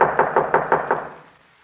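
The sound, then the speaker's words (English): Five quick, evenly spaced knocks rap on a wooden door, loud, then fade into a short quiet before a faint click at the end. “Well, I'll go ahead and knock at the door while you get your camera and supply case.”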